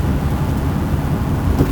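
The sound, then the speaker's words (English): A car rumbles past, a steady low road-and-engine roar holding at an even loudness for a couple of seconds, with no voices. “That could be one of our loyal listeners in that car.”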